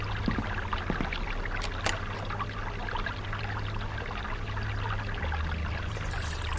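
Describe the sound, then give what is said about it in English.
Steady babbling brook water flows continuously, a busy trickling and splashing wash at constant moderate loudness, with a faint low hum underneath and no voices. “give me some kind of soothing noise. A creek. Good. Babbling brook.”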